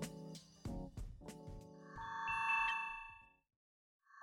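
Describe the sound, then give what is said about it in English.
A few sharp knocks and clatters give way to a steady, high electronic tone with quick bright blips over it, cutting off abruptly into silence; the beeping comes from an old time machine stashed in a closet. “Where is that beeping coming from?”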